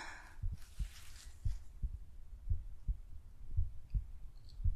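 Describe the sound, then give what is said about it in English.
A steady heartbeat heard through a stethoscope during a physical examination, its low, muffled lub-dub thumps repeating at a calm, even pace, with a brief rustle at the start and no talking. “So I'm just going to start firstly by listening to your heartbeat and your pulse, get a reading there.”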